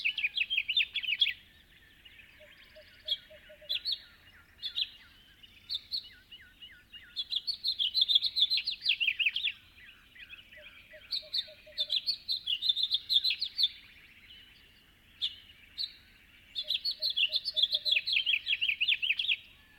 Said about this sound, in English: Another common twilight singer is the house finch, whose rollicking warbles are heard here, along with the distant toots of a western screech owl. The owl's toots are proof positive that it's still pretty dark outside.